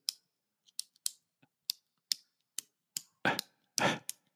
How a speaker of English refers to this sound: You got to have like a cheapo clicker. Listen to this. There's a whole. So if you start looking online for pen clicking, there's a whole ASMR, whatever that is. It's like listening to noises. Listen to this.